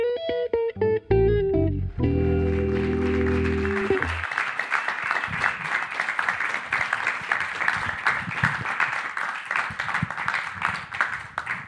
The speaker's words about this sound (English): Have you you look there like you were relishing them continually clapping for ages, despite their small size.